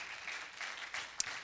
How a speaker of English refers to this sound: Come on, can you give him a hand clap of praise? Hallelujah.